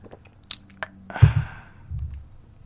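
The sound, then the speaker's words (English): A sip of green tea: a few faint lip clicks, then a short airy slurp followed by soft, low gulping swallows. No one speaks. “I got some green tea with me. Taking a sip.”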